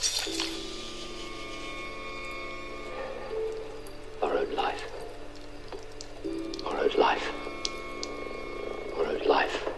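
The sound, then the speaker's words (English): Wood creaks and groans in a few slow, drawn-out bursts, rising and bending in pitch, over a steady low hum. “Have you noticed how often that sound of the creaking of creaking and groaning of wood, like the creaking and groaning of wood stirring, or shifting or moving in a wind, right?”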